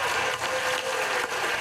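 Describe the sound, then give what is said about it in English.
Steady, dense applause on the Senate floor in Washington after lawmakers passed a landmark climate and health care bill, a continuous wash of many hands clapping at fairly loud level with no voices breaking through. “Where there was applause on the Senate floor after lawmakers passed a landmark climate and health care bill.”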